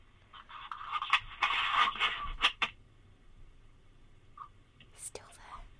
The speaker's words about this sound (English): I can hear you breathing